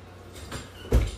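A door swings shut with a single low, solid thud near the end, preceded by a few faint scrapes and shuffles in otherwise quiet surroundings.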